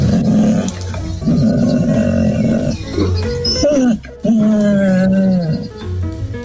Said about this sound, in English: She has changed so much since lockdown. She has started talking to me. She's never done this before. I've known this dog for 5 years. Each time I go to pick her up from the gate, this is what she does.